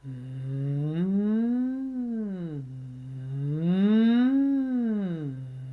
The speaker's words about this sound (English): I put my hand on my heart, put my hand on my belly, and I just connect them with a hum. You can slide the hum.